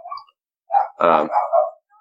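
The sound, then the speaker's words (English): A dog barks frantically in a quick, loud cluster of sharp barks, a brief yelp first, then silence before the agitated outburst. “That dog's freaking the fuck out.”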